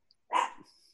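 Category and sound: animal, dog barking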